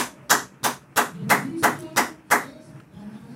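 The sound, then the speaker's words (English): An audience claps together in applause to the Lord, in a steady unison rhythm, seven sharp, loud claps about three per second, then breaking off, with a low murmur of voices underneath. “Can we give an applause to the Lord?”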